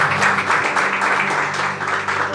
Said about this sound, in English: Please, let's clap for me. Amen.